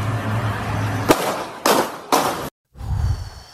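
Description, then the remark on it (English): Three sharp, loud gunshots, fired with intent to kill or maim, crack out about half a second apart over a steady low hum, followed by a sudden moment of silence and then a low, muffled rumble. “You can hear a young woman asking where the shots are coming from, and then you'll figure out the rest.”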